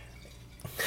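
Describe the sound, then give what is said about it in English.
Wine pours into a glass, a brief wet trickle with a small drip that swells into a brighter, splashier gush at the end. No one talks. “Are you pouring something? I'm having a little more wine.”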